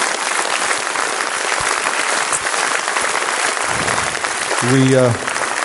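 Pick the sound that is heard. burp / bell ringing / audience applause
audience applause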